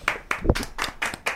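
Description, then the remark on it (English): A steady run of about six sharp hand claps, evenly spaced a quarter second apart, crisp and fairly loud, like an inserted clap track playing alone with no voices. “And we about to just insert the clap track here.”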